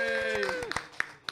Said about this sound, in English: Ladies and gentlemen, Rex from the Whiskey Tribe. Everybody give him a round of applause here.